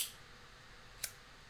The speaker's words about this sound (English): Ah! I'm always so scared by you playing with lighters. Someday it's gonna go terribly wrong. Yeah, it's not lighting right now.